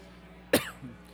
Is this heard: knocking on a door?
no